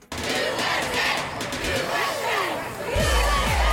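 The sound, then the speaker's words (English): A large crowd cheers and roars for the women's gymnastics team back from the Tokyo Olympics, many voices shouting over one another with rising and falling whoops, loud throughout and swelling slightly toward the end. “First time they've actually heard this kind of applause and this kind of love and adoration, which is something you usually get at the Olympic Games.”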